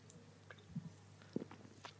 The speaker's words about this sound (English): I'm just going to clear my throat with a lovely, refreshing can of Watney's Pale Ale. Just give me a moment. Watney's do pale ale? I know. That's what I just found out. I'm just going to take a sip and see what it tastes like.